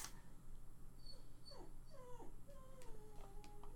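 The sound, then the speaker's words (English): During a tabletop role-playing game, a person imitates a dog's whimper with a series of thin, high, wavering whines that slide down in pitch, fairly faint over a steady low hum. “You whine like a wolf? No, not the doggy whimper.”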